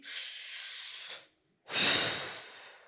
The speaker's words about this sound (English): Community is like breathing because community, it should be so normal. Because we're breathing right now. Take a deep breath with me.